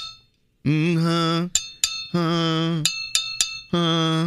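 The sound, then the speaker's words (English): A wedding ring taps a copper Moscow Mule cup to create notes, giving bright ringing tones with a steady pitch that sustain and decay. Three longer rings are interspersed with several short, sharp clinks, and no one speaks. “So I brought things in that create notes. Okay. Love this. And I hit them with my wedding ring.”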